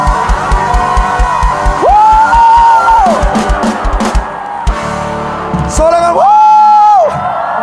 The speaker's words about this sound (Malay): Yang mau tepuk tangan sorak-sorai untuk Tuhan. Lebih dahsyat lagi.